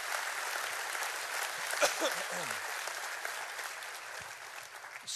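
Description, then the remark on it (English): A sustained round of applause honoring a pastor fills the whole stretch, dense steady clapping from a crowd, with a brief voice cutting through partway and no pause in the clapping. “And can we give a lot of honor and a big round of applause to”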